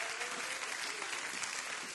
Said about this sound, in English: Let's just clap our hands a little. Come on. Come on, rejoice.